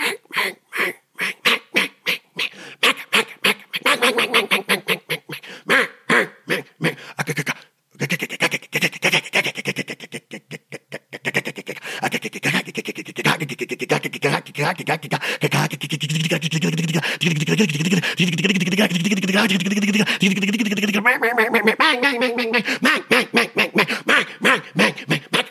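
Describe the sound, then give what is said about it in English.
A person imitates a hen mallard with a long run of rapid, nasal quacks, loud and steady, briefly pausing once before rattling on with barely a breath. “And that's how that hen mallard talks.”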